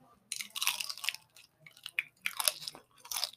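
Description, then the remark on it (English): Crispy fried pork skin, fatty inside with a crust like chicharrones, crunches loudly, a series of sharp brittle bites and chews in irregular bursts with no talking. “this is some really crispy skin”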